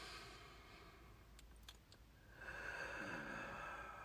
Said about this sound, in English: You can actively listen while breathing in through your nose.